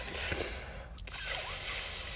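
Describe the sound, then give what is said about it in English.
Several voices imitate a sizzle with breathy hissing. A softer hiss fades into a brief pause, then a loud, bright, steady hiss starts and holds to the end. “We need to, like, let's do some sizzling. Ready? Wait, no. Let's sizzle out on eight.”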